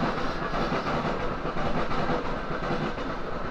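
A train rolls along railway tracks with a steady, continuous rumble and faint rhythmic clatter, even in loudness throughout, with no voices.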